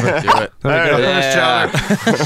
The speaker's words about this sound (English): Or I heard chowder bark, you know? Well, I love chowder.